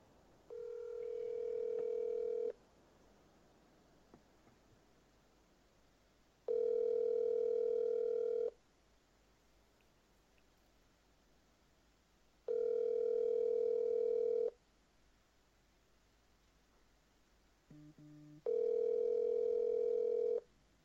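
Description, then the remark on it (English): A telephone ringback tone on an outgoing call to a grandfather, sounding four steady two-second rings separated by regular pauses, loud and clear, with a short lower beep just before the last ring. “If he hears the phone, he doesn't hear so well. So let's see. All right, let's call.”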